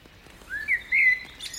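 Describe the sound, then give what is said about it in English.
A loud bird sings at night, after rain, from the tree right above the listener's head in a moonlit sanctuary: a few bright, slightly varied whistled notes rising and holding in quick succession, clear against a quiet outdoor background with no talking. “A loud bird, ever so slightly varying its song, positions itself in the tree right above my head.”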